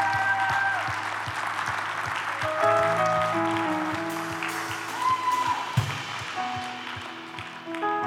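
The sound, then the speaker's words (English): A crowd claps steadily and loudly for about eight seconds, a dense, continuous patter with no voices, while sustained tones and a regular low thump sound underneath. “I told you we would clap.”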